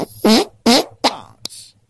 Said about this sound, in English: cup of farts. Farting rhinos? Why have I got a cup of farting rhinos?